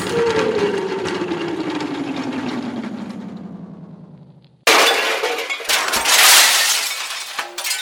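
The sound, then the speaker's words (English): A long descending whistle-like tone slides down in pitch for several seconds as a figure falls into a transmission tower. A sudden loud crash follows as the tower breaks, with shattering metal and debris clattering to the end. “You broke me whole tower, you juvenile delinquent.”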